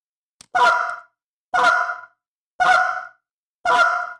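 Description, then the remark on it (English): Four short, raspy grunts from a goose call, made by pushing the tongue up hard and cutting the air, evenly spaced about a second apart, each one loud with a buzzy, honking tone, and no talking between them. “That that little grunt.”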